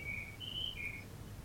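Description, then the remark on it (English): A bird chirps in the background, three sustained high whistled notes in quick succession, fairly faint over a low steady room hum with no one talking. “What bird is that?”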